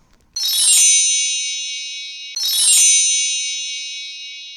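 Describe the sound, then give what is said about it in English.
Two bright, shimmering bell chimes ring out about two seconds apart, each a jingly metallic strike that lingers and slowly fades, with no talking. “When y'all hear those bells, y'all should know what time it is. It's time for our Becoming Who segment.”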